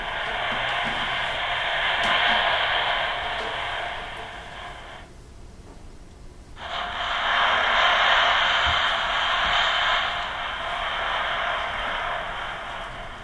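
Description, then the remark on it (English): Airy, breathy bowing on a string instrument, a steady hiss of noise like wind rather than a clear pitch, in two long sustained strokes with a short pause between them. “Or you can bow it in different places. Again, just getting a lot of airy, breathy, windy sounds.”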